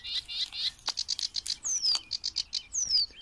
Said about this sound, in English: I'm walking along a reed bed now, which is bathed in the most lovely golden light in the early morning sun, just near Bramber Castle, which is poking out of a woodland just up ahead. And there are these fantastically noisy little birds.